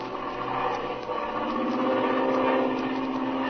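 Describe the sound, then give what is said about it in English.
A steady engine drone of an airplane cruising over a mesa in mountainous country hums continuously, like a propeller plane in flight, holding an even, moderately loud pitch with no pauses or voices. “As they cruise over the mesa, Speed notices tracks made by airplane wheels on the isolated tableland. And now, we find them cruising over the mesa.”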